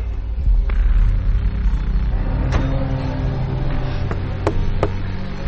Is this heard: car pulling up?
yes